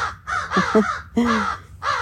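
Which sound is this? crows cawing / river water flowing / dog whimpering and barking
crows cawing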